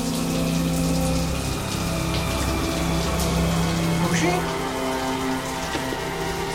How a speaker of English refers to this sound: He's not in the bed. There's a shower going.